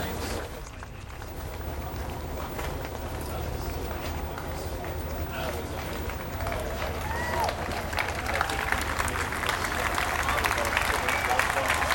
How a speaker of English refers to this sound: And there's a much broader round of applause now coming in.